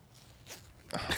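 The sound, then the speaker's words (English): A pants zipper is yanked open, a soft rasp building into a quick, loud ripping burst near the end, with no one talking. “That zipper sound was so good.”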